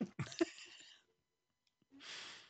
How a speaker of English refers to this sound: I said, now these people probably on the sphere listening to this podcast, and they're just hearing me munching on a taco.